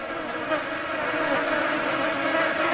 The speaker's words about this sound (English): They're flies, I guess, but I don't like them.